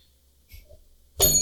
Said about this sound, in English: There we go. I was waiting for the bell.